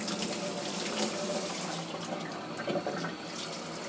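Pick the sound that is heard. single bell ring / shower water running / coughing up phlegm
shower water running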